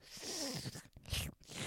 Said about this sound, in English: Leave the slurping in. I'm probably gonna replace all of this with that slurping.